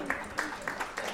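A few soft, scattered hand claps, a gentle little round of applause, quiet and brief, with loosely spaced claps over about a second.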